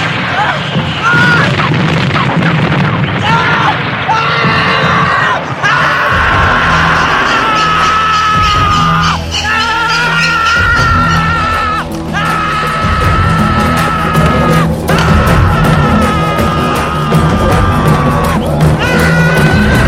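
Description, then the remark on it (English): A man screams loudly and at length, his raw cries stretching on almost without pause over a heavy low rumble and repeated sharp, booming bursts, in a scene from the film Birdy where the character Birdy is in a helicopter crash in Vietnam. “We then see a scene that you hadn't seen before of Birdy in Vietnam himself and what actually happened to him, and he was in a helicopter crash and he just screams for ages.”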